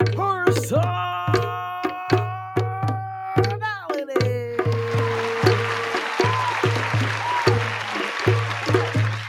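A music intro announcing a host, with a steady thumping beat, joined partway through by a dense wash of canned applause built into the intro that keeps going under the music to the end.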